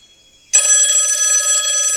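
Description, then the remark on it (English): A telephone bell starts ringing abruptly and keeps going, a loud, sustained metallic trill with bright tones. No one talks over it. “Should we go to the phones? I think we should go to the phones.”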